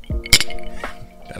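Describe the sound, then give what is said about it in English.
Two glasses tap together once in a toast, a bright clink that leaves a short ringing tone fading out over the next second, with faint murmurs behind it. “Are we cheersing? We are cheersing. It's live, by the way. Cheers. Live cheers.”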